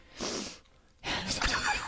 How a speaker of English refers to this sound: Hang on, did they sniffle? You smell so good. Oh, you did sniffle.